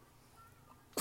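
After a near-silent stretch, one sudden, loud sneeze bursts out at the very end, sharp and explosive.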